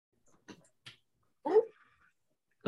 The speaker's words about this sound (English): Did the dog bark? Oh my gosh, she's trying to bark. One of the dogs is trying to say goodbye too. Oh, say bye, puppy. Goodbye, puppy.